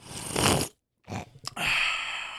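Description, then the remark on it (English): Someone takes loud, slurping sips of Natty light beer: a breathy pull, a brief silence, a couple of wet clicks, then a long airy hiss. No one speaks. “Here's the sip of natty.”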